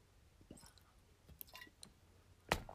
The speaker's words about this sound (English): I need to take a sip of water.